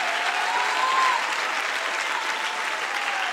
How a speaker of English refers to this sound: Can you clap your hands to the Lord? Can you clap those hands a little bit louder with expectation?